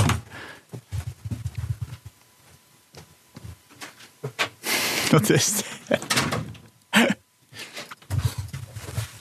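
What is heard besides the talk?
door being closed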